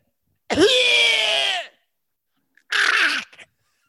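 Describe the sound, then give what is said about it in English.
A person imitates a dog's kennel cough with two harsh, honking vocal bursts, the first long and strained with a falling pitch, the second shorter and raspier after a brief pause. “So here's the here's a little interpretation. My interpretation of the canine cough.”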